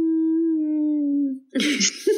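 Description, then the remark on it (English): A voice imitates whale song with a long, steady low moan that slowly slides downward, then breaks into a brief breathy, squeaky burst. It is fairly loud, with no other sounds. “Did you just do whale music then? Is that whale music? Can you do that again?”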